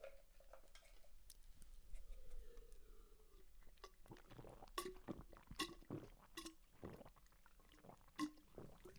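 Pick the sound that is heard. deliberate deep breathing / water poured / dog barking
water poured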